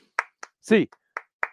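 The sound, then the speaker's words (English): Sharp hand claps of the UCLA Bruins eight-clap cheer ring out in a steady rhythm, crisp hits, with a brief voiced shout breaking in between them. “Get those hands in the air, Bruins fans. A clap time, baby. And 1, 2, 3, 4, 5, 6, 7, 8.”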